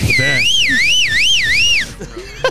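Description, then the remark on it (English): A loud whistled imitation of an ambulance siren by a woman, rising and falling in about three smooth wailing cycles before breaking off, with faint voices and murmurs around it. “There it is. See, there she did an ambulance.”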